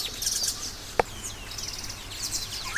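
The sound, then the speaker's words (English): A birdsong sound effect played on a Rodecaster plays at a moderate level, a flurry of high, bright chirps and twittering calls with a sharp click near the start, over faint background hiss and no talking. “I have things at my fingertips, including birds.”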